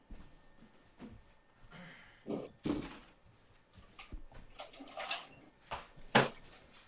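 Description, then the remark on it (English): A door is moved and shut, with a series of bumps, scrapes and rattles leading up to a final solid thunk near the end. Nobody speaks. “I got to close the door because I can hear myself in the background.”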